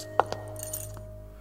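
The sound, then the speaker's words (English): Small pieces of Spanish glass clink together twice in quick succession, a sharp tap followed by a softer one, then fade against a faint, steady background hum. “this is no emerald, but Spanish glass.”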